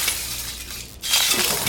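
Glass shatters twice in quick succession, a bright crashing burst followed by a brief gap and a second louder smash with tinkling shards, loud with no voices.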